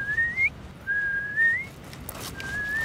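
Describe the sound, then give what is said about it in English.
A whistled imitation of a piping plover's call, at a beach: three clear, high, slightly rising whistled notes, spaced apart, over a low, steady rumble of background noise. “I thought I just heard a peeplow, which is a piping plover call.”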